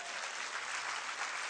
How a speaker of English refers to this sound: And number one, how many think that was an incredible altar call? Clap your hands.